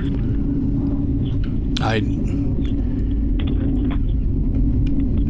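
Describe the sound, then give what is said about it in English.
A heavy, steady roar of F-35 fighter jets flying overhead fills the whole clip, a loud low rumble with a brief rising whine partway through. “What I have to say here, boy, do you hear that? I'm getting buzzed here by the F-35s.”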